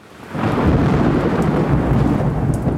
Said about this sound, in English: Thunder is the sound made by lightning.